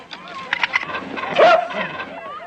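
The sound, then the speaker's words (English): A dog barks in a few quick bursts as people chase it trying to catch it, followed by a higher, drawn-out yelp amid scuffling commotion, with indistinct voices mixed in. “the whole, you know, chasing the dog, that was just, you know, slapstick comedy, watching them run around trying to get the dog.”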